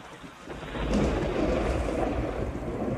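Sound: thunderstorm with heavy rain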